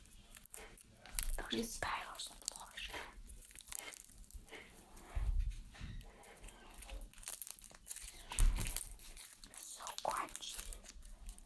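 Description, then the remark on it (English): Crackling crunches and snapping rustles come in irregular bursts, with a couple of heavier thuds as someone steps on a big pile of dry sticks, while someone whispers throughout. “I just stepped on a big pile of sticks, and it's so crunchy.”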